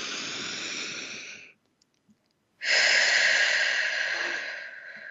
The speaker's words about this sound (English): So let's take a breath together.